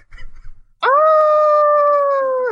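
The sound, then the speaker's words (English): A voice imitates a disdainful shriek: after a brief low rustle, one loud, sustained, mid-pitched wail holds steady for nearly two seconds, sliding slightly downward, howl-like and drawn out. “That's a disdainful shriek.”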